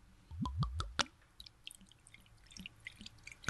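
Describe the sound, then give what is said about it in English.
Wine glugs out in a few quick, gurgling bursts as it is poured into a glass, then settles into soft trickling and faint dripping. No one speaks. “Oh, that sounded like the perfect pour.”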